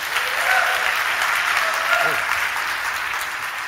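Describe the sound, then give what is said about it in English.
An audience claps for a woman after a prayer over her, in a dense, steady patter of many hands that holds at an even, fairly loud level for the whole few seconds without building or fading. “Can we give her a clap?”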